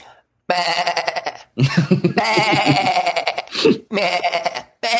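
Loud sheep bleating in several long, wavering calls, one after another with short gaps between them, and no talking alongside.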